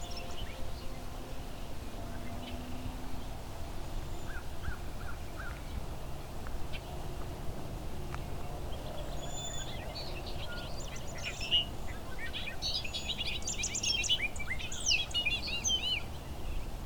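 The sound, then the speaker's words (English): A song sparrow sings in bursts of bright chirps and trills, picking up in the second half over a steady low outdoor rumble. “Song sparrow.”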